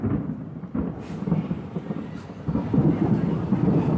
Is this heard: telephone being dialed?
no